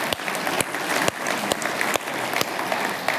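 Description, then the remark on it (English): A crowd applauds steadily for a man introduced as the site supervisor of their construction project, a dense wash of many hands clapping at an even, fairly loud level with no voices breaking through, lasting about three seconds. “You can give him a hand, even though you don't know what you're clapping for.”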